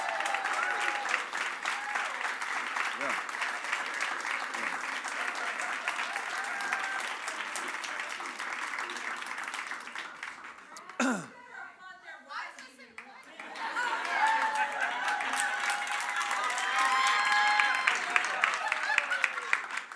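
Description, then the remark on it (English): An audience bursts into sustained, loud applause for the men standing who have been married over 17 years, dense clapping that briefly dips as a voice cuts in, then swells back up with cheers and chatter mixed through it. “Applaud these men right now.”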